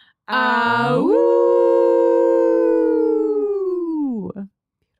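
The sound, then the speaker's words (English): Several voices howl together in a loud, sustained group howl that swoops upward, holds for about three seconds, then slides down and breaks off abruptly. “Are you ready to howl with us?”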